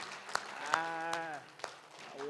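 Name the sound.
audience hand clapping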